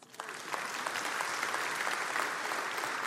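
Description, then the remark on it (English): Sustained audience applause, a dense wash of many hands clapping at a steady, even level throughout, with scattered sharper claps standing out from the crowd. “You may clap.”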